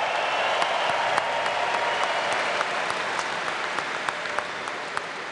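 A crowd applauds steadily for Ken Linsman, a dense wash of many hands clapping at an even, fairly loud level for several seconds, with scattered sharper claps standing out but no clear cheering voices.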